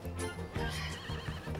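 A horse whinnies loudly, a single drawn-out, quavering neigh that rises and wavers, with faint hoof clops in the background and no voices.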